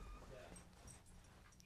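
A female dog whimpers and whines softly in a room, in thin high-pitched bursts over a low background hum, with faint sounds of movement.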